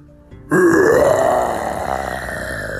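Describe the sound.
A person imitates a dinosaur roar, a sudden loud, throaty growl with a rising then falling pitch that holds for about two seconds before easing slightly.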